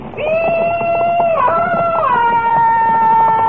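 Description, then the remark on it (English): A loud, sustained war whoop yelled in answer to riders' yells of welcome: one long yelled tone with a fluttering, warbling tremolo that steps up in pitch partway through and holds strong to the end. “Well, I better answer those yells of welcome, huh?”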